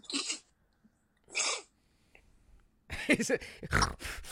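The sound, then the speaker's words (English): Two sharp, breathy sniffs separated by a short pause, followed by a longer stretch of rough, snorting nasal sounds and throat noises from a person with a deviated septum. No one speaks. “Yeah, you hear me sniffling and shit.”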